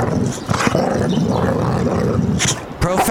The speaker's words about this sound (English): I'm doing a special mic excursion down to Santa Cruz, possibly Monterey, Carmel, with my dog, Basil the Boxer, who wanted to say one more thing.